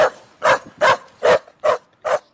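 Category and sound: animal, dog barking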